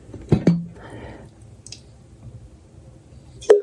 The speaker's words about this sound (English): Oh, that was loud. That was my water.